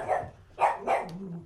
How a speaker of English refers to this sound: Going bananas. Hush. B-A-N-A-N-A-S. Luna. Devil-ass dog. Demon dog.